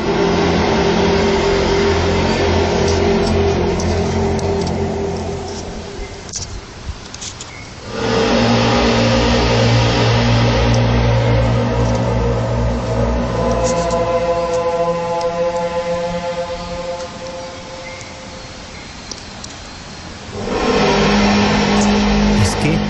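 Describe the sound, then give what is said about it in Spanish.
A loud, low droning hum recorded in Houston, with layered, steady tones and faint higher whines, sustained for the whole stretch, easing briefly twice before swelling back. “en Houston, este año la Tierra habló así.”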